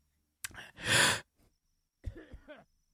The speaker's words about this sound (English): Why did you buy a fucking cough button if you're not going to use it? All right, let me cough again.